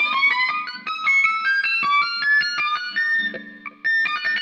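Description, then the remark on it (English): A sustained electric guitar note whose pitch climbs and shifts in short steps as a thimble shortens the string, ringing clearly with a slightly effected, bright tone and no voices. “But if you're using the neck pickup, you're not going to hear that. You're going to get the shortening of the string.”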